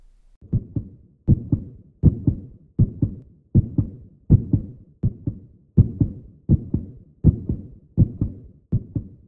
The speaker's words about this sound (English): Sometimes, when I listen to my heartbeat, I learn about my feelings and how I want to express myself in the world.